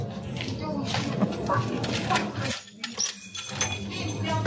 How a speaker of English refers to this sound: She's kicking around broken glass right there.